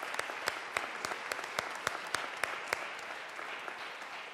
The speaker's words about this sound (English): Could you just help join me in giving them a round of applause and thanksgiving?